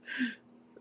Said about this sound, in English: Sorry, I have to take cough breaks.